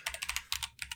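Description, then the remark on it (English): Rapid typing on a computer keyboard as someone manually types in a URL, a quick run of sharp clicky keystrokes in uneven bursts, fairly loud, with no voices present. “I need to type this in.”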